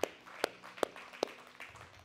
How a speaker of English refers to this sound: Amen. Y'all may be seated. Amen. Somebody give Jesus a hand clap of praise.